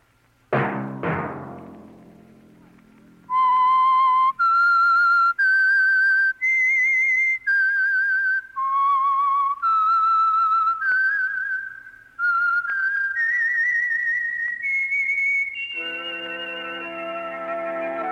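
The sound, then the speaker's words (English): A loud whistled theme melody of the Signal Oil radio program The Whistler: about a dozen sustained, wavering notes rising and falling, opened by two sharp struck hits and closing as an orchestral chord swells in. “Let that whistle be your signal for the Signal Oil program, The Whistler, each Sunday night at this same time.”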